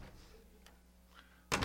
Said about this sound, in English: Here, I'll be the big bad demon on the other side. Slam the door in my face.